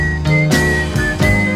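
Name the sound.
whistling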